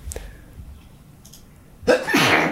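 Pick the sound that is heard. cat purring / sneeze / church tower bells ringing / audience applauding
sneeze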